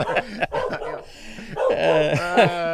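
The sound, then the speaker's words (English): A dog yips and barks in quick, high bursts, then lets out a longer, wavering vocal sound, as if chattering, fairly loud throughout. “Oh, he's talking it up.”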